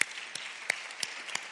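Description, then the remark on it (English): A round of applause: a steady, dense crackle of many hands clapping, with a few sharper claps popping out at a roughly even beat. No one speaks over it. “you know, and for her daughter to be that stand up, you know, I think that we need to give you a round of applause.”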